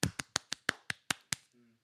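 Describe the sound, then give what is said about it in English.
Eight sharp, bright hand claps in a quick, steady rhythm, loud and crisp, followed by a faint brief hum of a voice starting up. “I'm only clapping because I'm low-key, like, tired of this fake-ass relationship.”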